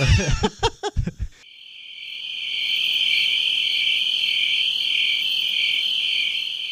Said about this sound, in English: All I heard was crickets.